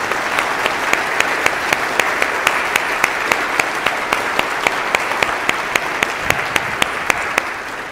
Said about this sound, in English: Let's give a round of applause for all of our new brothers and sisters.